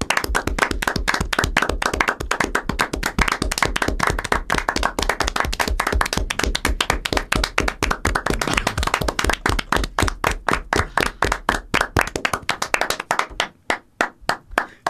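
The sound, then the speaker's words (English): A long stretch of steady, rhythmic clapping, loud and evenly paced at a few claps per second, runs for about thirteen seconds before thinning out and stopping: applause on the MinnMax Show for the developers of the games on a 2019 games list. No one speaks. “Let's give a sincere... extended round of applause for all the developers who killed themselves making these games.”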